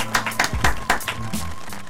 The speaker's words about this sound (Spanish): Aplausos.